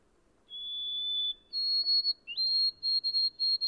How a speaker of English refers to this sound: last discovered that it was the white-throated sparrow, a common bird all through this region. Its song is very delicate and plaintive, a thin, wavering, tremulous whistle. Which disappoints one, however, as it ends when it seems to only have begun.